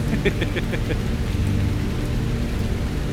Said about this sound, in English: Oh, that rain.